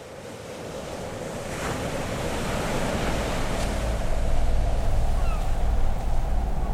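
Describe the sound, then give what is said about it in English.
Steady surf rolls in along an empty beach, a broad continuous wash of breaking waves that swells slightly louder over time, with wind buffeting the microphone and no voices present. “This time, the beach is empty. And the water appears clearer and cleaner than before.”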